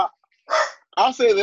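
A few short, harsh dog barks: one brief yap, a pause, then two quick louder barks in a row, with no other sounds around them.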